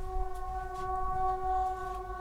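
A war alarm siren sounds as a steady, sustained multi-tone chord, holding level throughout over a low rumbling background with faint intermittent noise bursts and no speech.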